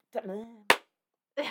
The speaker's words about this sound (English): while I'm clapping.